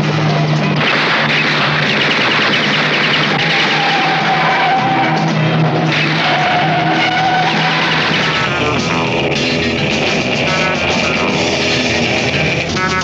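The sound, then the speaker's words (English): Loud, continuous roar of racing sports cars, engines whining up and down in pitch as they pass, with screeching tires and sharp bangs mixed into a dense, chaotic din. “Master sports car racer.”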